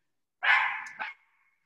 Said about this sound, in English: The dog's going nuts in the background.